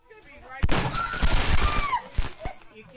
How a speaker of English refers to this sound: So everything's fine, right? We're just having some fun with some fireworks, right? No harm done.